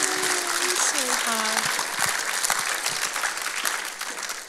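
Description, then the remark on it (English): A church audience claps in a dense, steady wash of applause after a declaration of commitment to a life lived for Jesus, with a few rising vocal whoops and cheers in the first second or so, the clapping easing slightly toward the end. “Round of applause.”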